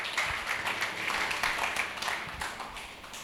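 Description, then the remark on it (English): An audience at a church service claps together for a man about to give his testimony, in a steady, dense wash of applause, many hands overlapping at an even loudness for a few seconds, with no voices over it. “We can clap for him as well.”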